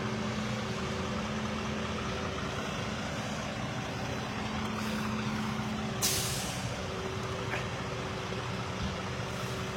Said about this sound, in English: Wow, this is going to be a powerful tow truck.